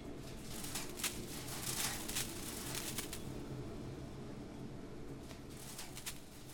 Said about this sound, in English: The ribbons of paper land in a stack with a gentle shushing sound, and later the mountain of paper trimmings will be swept up and gathered into a bale which will be sent for recycling.